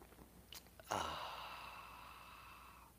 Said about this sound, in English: I like coffee. And join me now for the unparalleled pleasure of the dopamine of the day, the thing that makes everything better. It's called the simultaneous sip, famous all over the world, and it's going to happen now. Go.